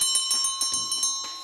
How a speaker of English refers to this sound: Oh, there's the closing bell.